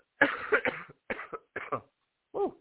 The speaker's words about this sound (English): Okay, sorry guys, I got a cough.